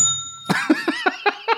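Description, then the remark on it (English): A fading metallic ring, then a bell is struck six times in quick, even succession, each bright ding loud, ringing over the last. “Hey, let he who has not had a finger in his ass strike the first bell.”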